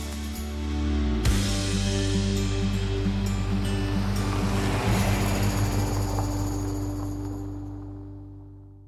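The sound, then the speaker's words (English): Waves wash onto the Coffs Harbour jetty foreshore on a morning with blue skies, in one long, rushing swell that builds quickly and slowly recedes, with a steady low mechanical hum running underneath. No voices. “We're here at the Coffs Harbour jetty foreshore”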